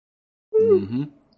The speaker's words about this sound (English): I forgot I was, like, yawning into the mic. My bad.